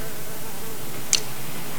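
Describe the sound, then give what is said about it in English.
A housefly buzzes in a steady, thin drone for about two seconds, broken once by a brief sharp tick partway through, as a maintenance man tries to get rid of flies with chopsticks in an apartment. No voices are heard. “But, so a few minutes later, we finally see the fixer guy, and chopsticks in hands, trying to eliminate the fly problem of Rosita, one fly at a time.”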